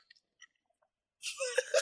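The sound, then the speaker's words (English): Two quick slurping sips of a drink, one right after the other, taken as a double sip in a drinking game, following a few faint clicks and a brief silence. No one speaks. “That's that double sip sip. Here, I'll show you. It's like this.”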